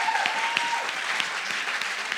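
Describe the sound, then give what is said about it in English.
A crowd claps steadily for the cleaning team, many hands blending into a dense, even wash of applause that holds at a moderate level throughout, with a faint tone drifting briefly underneath. “If you serve on our cleaning team, can we give them a big applause?”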